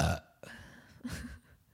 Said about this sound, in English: You can't for sit there and act as if you haven't burped like that today. You disgusting yes, human.